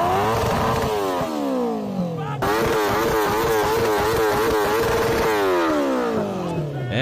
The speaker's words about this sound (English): that's that. That's your exhaust system, folks.